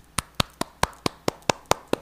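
A short burst of applause: about nine sharp hand claps in a quick, steady rhythm, with no voices in between, welcoming a special guest.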